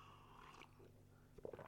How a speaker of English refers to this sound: now I've not made it a secret that I like coffee, and I'm going to take a sip right now. Hold on.